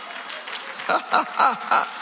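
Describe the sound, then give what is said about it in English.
An audience at the final service of the Lateran Assembly of the End Time Church, on a rainy day, claps together in a steady wash of applause, with a few louder rhythmic bursts rising above it. “Some are clapping and others are not clapping.”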